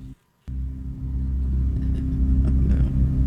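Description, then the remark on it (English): After a brief moment of silence, a steady white-noise style drone kicks in: a loud, deep, rumbling hum, like an idling engine, that holds evenly to the end without any voices. “Oh, no. The white noise.”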